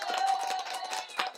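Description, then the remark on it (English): A brief round of applause from a small group congratulating someone, with quick, overlapping claps at a steady moderate loudness, lasting only a moment. “Let's give her a round of applause, everybody.”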